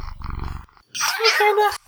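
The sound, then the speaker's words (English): A cat lets out one long, drawn-out meow with a wavering whine, preceded by a brief low rumbling growl-like sound and a short pause. “That meow.”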